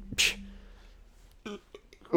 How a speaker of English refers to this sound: Are you going to throw up? Nope, it was just a burp.